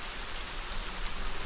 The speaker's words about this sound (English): Moist air colliding with intense heat and mountainous terrain breeds epic thunderstorms. Rainfall rejuvenates the arid land. Grass grows lush. Wildflowers spring forth. Gullies once dusty now rush with water.